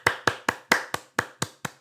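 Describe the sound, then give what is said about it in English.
A short applause effect: about eight sharp, crisp hand claps in a steady, even rhythm, like a single person clapping rather than a crowd, with no voices. “Oh, that's the curtain and the applause.”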